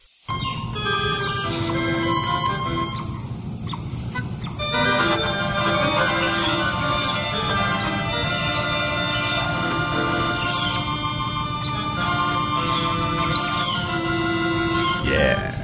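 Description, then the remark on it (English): A steady musical composition of sustained, layered tones plays throughout, while high, quick bird chirps and squeaky tweets flutter in the background over the music. “Evan, I hope those birds in the background are something funny about that because they just crack me up.”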